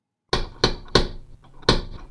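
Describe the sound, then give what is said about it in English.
Four loud, sharp knocks on a door: three evenly spaced raps, a short pause, then a final one, each ringing briefly before fading. No one speaks. “Just a sec, there's someone at the door.”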